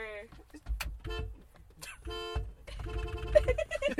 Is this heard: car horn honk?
yes